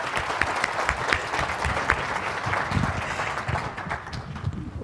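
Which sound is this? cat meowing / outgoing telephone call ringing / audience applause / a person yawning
audience applause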